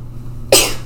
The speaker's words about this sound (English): Oh, right. Sorry, I forgot. She never sneezes just once. That's okay. I just forget every time.